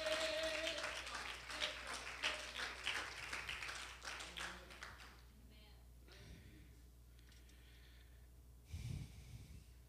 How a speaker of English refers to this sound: Oh, somebody clap your hands to the Lord today.